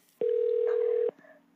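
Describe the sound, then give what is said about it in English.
A single steady electronic telephone dialing tone sounds loudly for just under a second, starting and stopping abruptly, followed by near silence. “to be fearless in the face of making an intimidating phone call.”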